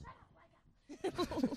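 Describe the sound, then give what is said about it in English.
The landlord's dog, Laika, barks several times in quick succession, loud, following a brief stretch of quiet low background noise. “Okay, that's my landlord's dog, Laika.”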